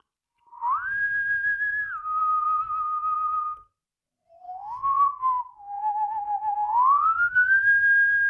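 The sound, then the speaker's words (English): A person whistles a clear, sliding tune late at night, in two long phrases separated by a brief pause, with no talking. “Stop whistling and go to sleep.”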